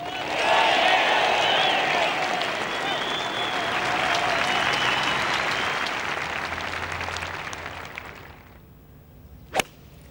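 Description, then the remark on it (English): A large golf gallery at the first hole applauds Nick Faldo's tee shot in a dense, steady patter of clapping for about eight seconds before it fades away, followed by one sharp, isolated crack near the end. “And wait for the applause as he passes this massive gallery at the first.”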